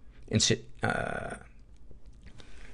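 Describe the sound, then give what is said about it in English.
Two harsh coughs from someone who swallowed wrong, not from illness: a short sharp burst, then a longer, raspy, throat-clearing cough. Fairly loud, with quiet background afterward. “That was a swallowed wrong, not a getting sick cough.”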